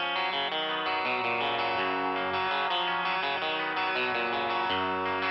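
A loud rock song plays with heavily distorted electric guitars driving a dense, sustained chordal wall of sound, shifting chords every second or so over a steady low end, with no voices.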